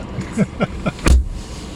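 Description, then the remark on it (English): A car engine is started in cold January weather in Winnipeg, Canada: it cranks with three quick rhythmic whirs, then catches with a louder, deeper burst before settling into a low idle. “I'm going to start my car.”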